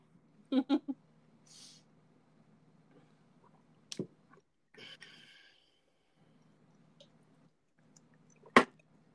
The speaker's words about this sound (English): Cheers. You can drink 6. I'll drink 10. Yeah, get on it. Enjoy that Kylo Rye slurp.